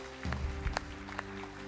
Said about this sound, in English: Let's give the Lord a great round of applause. Thank You, Lord.